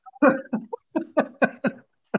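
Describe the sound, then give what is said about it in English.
A fairly loud run of about seven short coughs in quick, uneven succession, with a final lone cough after a brief pause; no one talks. “God, I had to cough the whole time I was listening to that song.”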